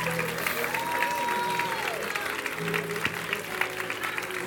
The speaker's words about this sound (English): Give them a hand clap as they go. Hallelujah. Thank you, Lord Jesus. Come on, give them a big hand clap this morning. Don't patty cake.